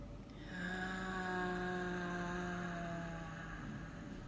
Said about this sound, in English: But actually, I'm like being really honest with you, that just this, just breathing in this way, like we were just breathing now, let's do it again, inhale.